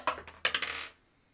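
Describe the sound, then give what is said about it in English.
Dice roll across a table, a quick clatter of small hard objects tumbling and bouncing with several sharp clicks over about a second before settling into quiet. Moderately loud, with no voices. “If I can find the right dice.”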